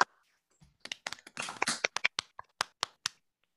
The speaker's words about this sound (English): So with that said, folks who are able, turn your camera on, turn your microphone on, join me in giving a round of applause and appreciation to our amazing speakers today.